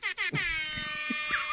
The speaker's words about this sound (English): A lot of applause to you and rap air horns.